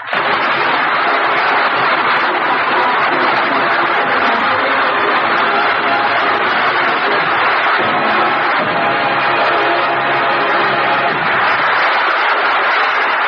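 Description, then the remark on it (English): A large radio-show audience applauds loudly and steadily for Edgar Bergen and Charlie McCarthy at a show celebrating Edgar Bergen Day in Decatur, Michigan. A dense crackle of many clapping hands holds at full strength for over ten seconds with no voices. “Bless you all for that applause.”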